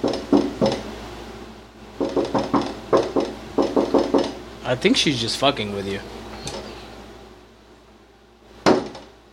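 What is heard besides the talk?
banging on a window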